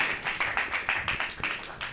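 An audience at a comedy night claps for a comic from Boston in a quick, steady rhythm of crisp hand claps, forming a moderately loud, sustained burst of applause with no voices on top.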